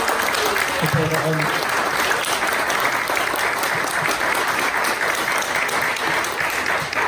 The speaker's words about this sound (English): But basically, we wouldn't be here without the people that work here. So a big round of applause to them.